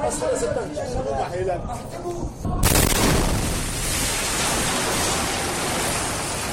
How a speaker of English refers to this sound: It's called Rebel Bomb Shakes Residential Neighborhood in Aleppo